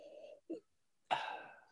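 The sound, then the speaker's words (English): Breathy sniffing of whiskey in a Glencairn glass: a brief nasal sniff, a pause, then one longer, sharper inhale through the nose that trails off. No talking. “But I'm going to sniff it now in my fancy little Glencairn glass.”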